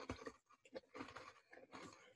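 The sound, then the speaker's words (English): Crisp crunching of someone chewing a thin, crunchy cookie with a caramel and finely ground nut topping and salt from Miyako Island, Okinawa, with a quick run of brittle bites and short pauses between them. No one speaks. “It adds the perfect balance to the caramel and nut topping for this thin and crunchy cookie.”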